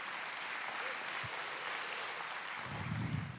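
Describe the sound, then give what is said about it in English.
An audience at a sermon claps steadily for a few seconds, a dense, even wash of many hands with a faint voice briefly audible underneath toward the end. “Can I have a clap for that?”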